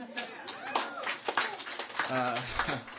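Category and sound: crowd, audience clapping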